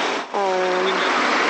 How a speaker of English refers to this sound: So this is lots of traffic at this time. You would think, having started work early, yeah, that you would avoid the traffic, but you don't. No, you don't. You still get all the traffic.